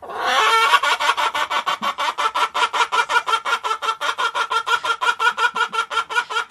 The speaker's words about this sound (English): He has a bunch of chickens on his farm, and he decided to record himself telling one of his chickens a joke.